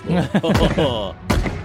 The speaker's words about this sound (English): And the ground beneath your feet feels... different, a little shifting, and you can hear cannon fire.